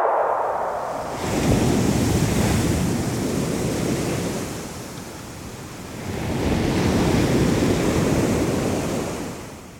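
Ocean waves surge in and wash back out, two loud rolling swells of surf hissing over a low rumble, with a brief quieter ebb between them and no voices.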